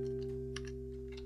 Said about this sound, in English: I'm typing as you can hear. Yeah, and it comes up right on the screen.